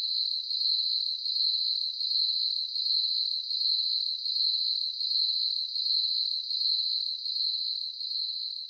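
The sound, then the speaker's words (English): Crickets chirp steadily in a bright, high-pitched trill, pulsing in a regular rhythm of about one beat per second against otherwise silent background, with no voices. “Exactly, crickets.”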